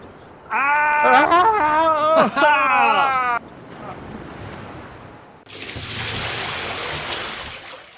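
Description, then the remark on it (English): A voice speaks loudly over a low background hiss, then after a brief lull the steady, roaring rush of Schweitzer Falls on a Jungle Cruise boat ride swells in and continues strongly to the end. “Excuse me, but I don't remember there being any falls this big on this run.”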